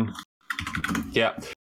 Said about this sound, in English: So, where are you typing? You're on Liquipedia.